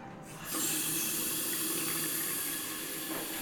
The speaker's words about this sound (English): But what I'm really excited to see is my hotel bathroom. I'm about to turn on the faucet.